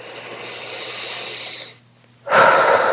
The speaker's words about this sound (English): One more breath, accepting all those feelings without judgment, without trying to change them.